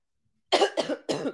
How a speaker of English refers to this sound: Excuse me. I'm so sorry, you guys, with the coughing, but I really wanted to talk to you. I hope it's not too gross.